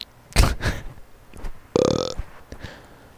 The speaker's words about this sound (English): I farted, but I didn't put the microphone by my butt.